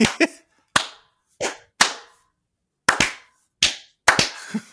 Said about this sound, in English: We can all do a slow clap.